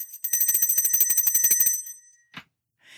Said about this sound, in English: Let me ring the bell.